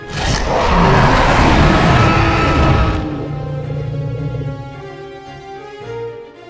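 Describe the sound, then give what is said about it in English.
A giant Tyrannosaurus rex roars: a huge, rasping roar blasts for about three seconds, then trails off into a lower, throaty rumbling growl that lingers to the end. No one speaks. “At the sound of another of Buck's cries, the giant T-Rex lowered its head and roared so loud it blew Bo's fedora off his head and extinguished the torches around the shrine.”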